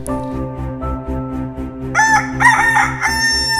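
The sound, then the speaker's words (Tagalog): A rooster crows loudly, a drawn-out cock-a-doodle-doo that bursts in halfway through over a steady, low instrumental hum playing throughout. “Sabi ng manok, sigaw naman ni orasan, ang kay walis tingting.”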